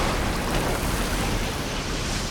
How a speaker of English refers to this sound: I must have traveled through the pier and into the ocean because without any warning, a frothy wave rises up and crashes over the railing, soaking us from head to toe.